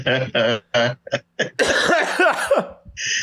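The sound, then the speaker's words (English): A burst of loud coughing brought on by laughing: several short, rough hacks in quick succession, followed by a longer, raspy fit of spluttering coughs that trails off. “I'm coughing over here.”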